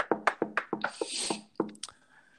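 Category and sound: impact, knocking on wood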